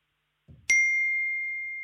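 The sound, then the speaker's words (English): A quiz buzzer goes off with a single bright, high ding that rings on steadily and slowly fades, preceded by a soft low thump as the button is hit. “Must have been close, those buzzers.”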